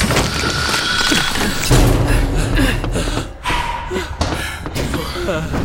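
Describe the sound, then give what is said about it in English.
A heavy door creaks and swings shut with a deep, booming slam, set against a dense, noisy background of movement and commotion. “Mira, the door.”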